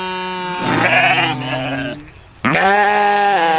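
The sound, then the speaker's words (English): A sheep bleats loudly, a long wavering cry followed after a brief pause by a second drawn-out bleat, with no other sounds around it. “Black sheep. Shout-out.”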